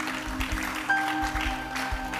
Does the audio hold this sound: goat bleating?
no